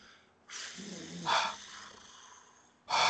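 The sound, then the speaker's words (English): Heavy, rasping mouth breaths, a long airy exhale building to a louder gust, then a short pause and another strong huff of breath. “I'm mouth breathing now.”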